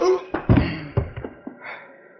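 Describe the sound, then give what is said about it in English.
A heavy punch to a man's jaw lands with a solid thud, followed by a few quicker, fading knocks, then the man lets out a short, low groan. “Just give me one good whack at your jaw.”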